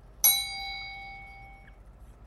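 A single bright bell strike rings out alone, its clear metallic tone with shimmering overtones sustaining and slowly fading over about a second and a half.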